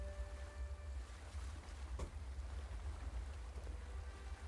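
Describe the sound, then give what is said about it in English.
A drink is poured into a glass in a steady, splashy stream lasting a few seconds, with a faint ringing tone early on and a low rumble underneath; no one speaks. “I'll pour you a bit.”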